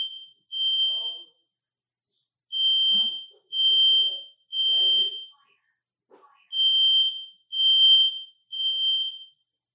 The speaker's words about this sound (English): Really, I just pushed the record button and the fire alarm go off.